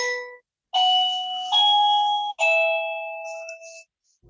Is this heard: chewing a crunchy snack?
no